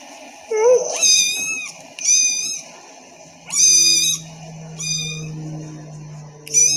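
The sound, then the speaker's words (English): A kitten meows repeatedly in high, insistent cries, about five calls spaced roughly a second apart, fairly loud, with a faint low hum underneath and no talking. “Well, I know that kittens, most kittens can't speak English, and I have a very interesting kitten sound to play, and you can tell me what this kitten is saying.”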